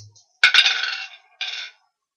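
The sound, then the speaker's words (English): Dice are rolled for a drive roll: a couple of sharp clacks, then a bright, rattling tumble for about half a second, a brief pause, and a second shorter rattle before silence. No one speaks. “So I'm going to ask for a drive roll just to avoid this vehicle.”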